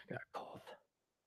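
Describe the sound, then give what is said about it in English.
A short, rough throat clearing followed by a harsh smoker's cough, fairly loud, lasting under a second before going quiet. “One of these days, I'll come up with a cure for my cough. It's a smoker's cough.”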